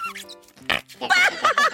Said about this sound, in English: This, my new robotic buddy, is Fart Putty. What does it do? Watch and listen.